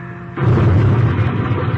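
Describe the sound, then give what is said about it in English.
A plane crashes into the hills across a river in a border area: a brief droning engine tone gives way to a sudden loud explosive burst that rolls on as a dense, rumbling roar, with no voices. “It crashed,”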